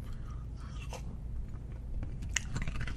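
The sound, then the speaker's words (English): Crunchy chewing on a crackling snack, with a string of sharp, brittle cracks and crunches over a low, steady rumble, loudest toward the end. No one speaks. “Maybe it's the second bite. That's what really kicks in when it crackles.”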